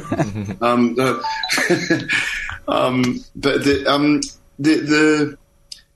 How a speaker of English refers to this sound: Sorry, I set my alarm at the wrong time.